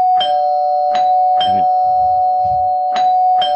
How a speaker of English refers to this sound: You can really, you're inside now, you can really, you don't need to keep on ringing the doorbell. But I like to. It's fun.